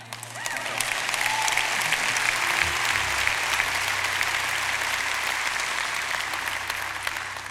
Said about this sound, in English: You can clap for that.